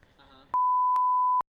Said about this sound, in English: Everything is just beep, just long beeps.